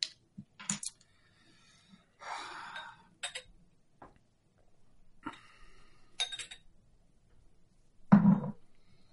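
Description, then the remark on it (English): Liquid is poured into a glass in a couple of short splashing bursts, mixed with sharp clinks and taps of glassware, with a heavier knock near the end and no talking. “Proof of the pour there.”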